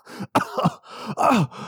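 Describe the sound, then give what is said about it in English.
A person acts out the character Washer coughing himself awake after inhaling a tail that fell into his mouth while snoring: a sharp, rough cough burst followed by groggy groans and throaty grunts, fairly loud over a couple of seconds. “And he took a big inhale of that on one of the snores and just coughs himself awake.”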